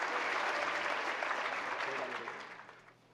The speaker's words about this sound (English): And I did say that this is a celebration. That means that clapping is encouraged, and even a hoot and a holler and whatever you want to throw up here is all approved.